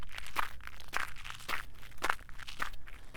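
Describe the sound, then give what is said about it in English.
Five crisp footsteps crunch over the icy crust of about an inch of new snow that fell the day before, at a steady walking pace in the dark, each step a sharp, gritty crunch, with no voices. “As I crunch on the ice of the new fallen snow that fell yesterday.”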